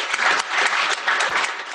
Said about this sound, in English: So yeah, can we get a round of applause for that and for product and engineering? Yes.